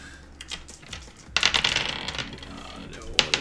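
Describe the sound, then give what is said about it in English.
Dice clatter and tumble across a tabletop in a quick burst of sharp clicks and rattles as players roll for a tabletop game, settling after a moment, with a final few taps near the end. “Oh, no, wait, I put an extra dice into that one.”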